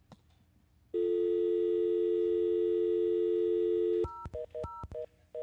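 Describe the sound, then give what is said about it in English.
A steady telephone dial tone hums for about three seconds, then breaks into a quick run of short touch-tone keypad beeps as a number in Jerusalem is dialed; no one speaks. “And we're going to call him on the phone right now and talk to him.”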